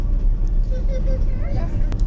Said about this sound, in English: Went and got myself a jumbo coffee and caught a bus, which loaded up quickly and chugged on down the hill down to sea bus, and here we go.